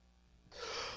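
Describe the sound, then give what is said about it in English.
A person imitates a big, sharp gasp of air: a sudden, breathy inhale that starts abruptly after a brief quiet moment and holds loud and close until the end. “This big gasp of air.”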